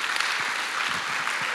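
A crowd applauds a small group steadily, a dense wash of many hands clapping at an even, fairly loud level with no pauses and no voices standing out.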